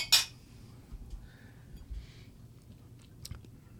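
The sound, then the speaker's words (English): A bright, ringing clink of glasses in a toast with rum distilled with Mackinac Island fudge, right at the start, followed by quiet sipping and soft mouth sounds with a faint tap later on. “So raise your glass. Cheers to Jesus.”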